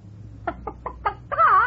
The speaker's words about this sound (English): What's that chicken doing here?